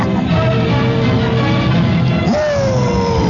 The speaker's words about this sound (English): That's the sound of the wind through the rigging.